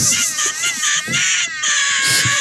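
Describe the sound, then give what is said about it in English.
A rapid string of shrill, strained cartoonish screams of the video game character Mario, edited together back to back with abrupt cuts between takes, loud throughout, with no talking. “That is someone edited all of Mario's screams.”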